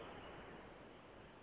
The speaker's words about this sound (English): I just dumped a thing of water out that I had. All right. Yeah. I'm grabbing my bottle. Your microphone is really good, and it picks up that sound really well.